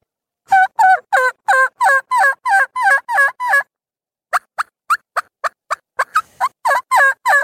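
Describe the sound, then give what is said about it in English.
Rapid, rhythmic turkey gobbles produced by blowing on a latex call, a run of about nine quick yelping notes, a brief pause, then a faster burst of sharp clucks and gobbles, loud with no talking. “So it depends on what you do and how you blow on the latex itself.”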